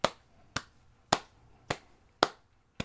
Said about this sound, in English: Slow golf clap. Slow golf clap.